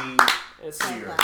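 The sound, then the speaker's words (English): A few slow, sharp hand claps spaced widely apart, with a person's voice murmuring in the gaps between them. “Slow clap.”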